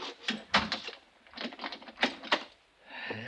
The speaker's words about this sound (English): You better close that door and lock it